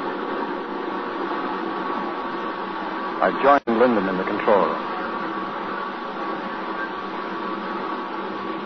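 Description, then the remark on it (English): The engine of the submarine X-915, running under atomic power, holds a steady, even mechanical hum throughout, while a man speaks briefly over it. “Engine sound good.”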